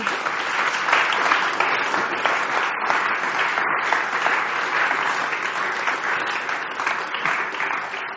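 Sustained applause from an audience, a dense, steady wash of many hands clapping at a fairly loud, even level for about eight seconds with no voices over it.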